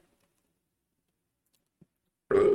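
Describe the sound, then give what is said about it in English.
Quiet at first, then a loud, low, rumbling burp bursts in near the end, running right up to the cutoff. “Burping is called.”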